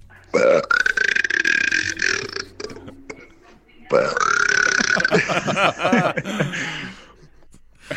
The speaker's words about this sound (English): Oh my God. The timbre and the resonance of your burp in these headphones is so good. Wow.